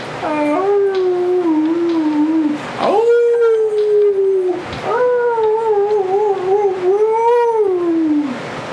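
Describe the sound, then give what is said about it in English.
A dog sitting on a front porch howls mournfully three times in a row, long wavering wails that rise and sag in pitch, loud with only brief breaths between them. “Sure enough, there's the dog, sitting on the front porch, howling pitifully to anyone that will walk by.”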